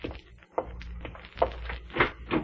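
High heels clicking across a hard floor: about five sharp, bright taps at an even walking pace, moderately loud over a low, steady hum, with no voices.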